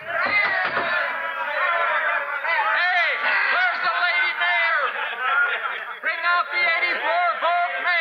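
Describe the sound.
A rowdy, drunken crowd clamoring together, many overlapping voices shouting, jeering and snickering in a steady loud din that barely lets up for the whole stretch.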